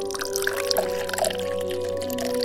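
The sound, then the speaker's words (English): Water pours steadily into a glass for a couple of seconds, a continuous splashing stream whose tone rises slightly as the glass fills. No one speaks. “The glass of water is always your first step in self-soothing.”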